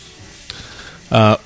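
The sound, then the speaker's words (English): A single loud cough bursts out abruptly after a quiet stretch, followed by the start of another right at the end. “Sorry, we're coughing in all of your ears.”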